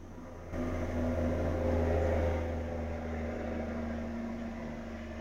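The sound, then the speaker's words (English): A truck rumbles past outside, its deep engine drone rising in after a brief pause, peaking, then slowly fading as it continues away. No one speaks. “Excuse me, I have a lot of trucks to drive by.”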